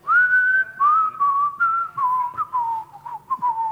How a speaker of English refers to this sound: Now that, not the whistle, but the song actually was so popular it went number one around the world.